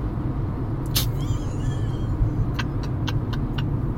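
Steady low rumble of a car interior while driving, a dense road-and-engine drone filling the space, broken by a few short sharp clicks toward the end; no one speaks.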